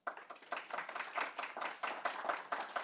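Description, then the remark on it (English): An audience applauds the panelists at the end of a panel discussion, many hands clapping in a dense, continuous patter that stays fairly even throughout, with no one talking. “How about a round of applause for them?”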